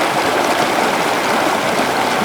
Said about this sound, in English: I came upstairs to the apartment and heard what I thought was Niagara Falls.